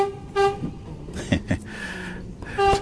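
train horn

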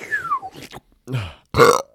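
burp

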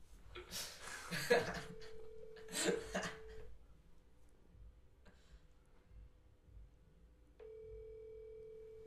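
phone call ringing

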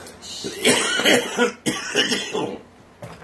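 coughing

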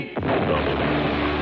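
explosion sound effect

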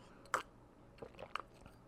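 sipping coffee

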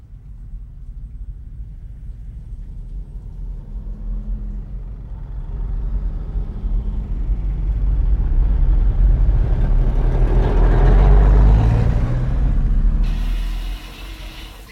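road traffic passing outside

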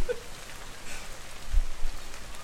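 rain

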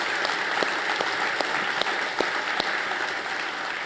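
audience applauding

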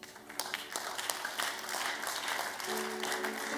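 audience clapping

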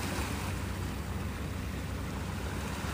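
moving water

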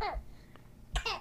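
baby coughing

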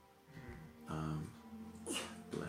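sneeze

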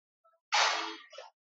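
sneeze

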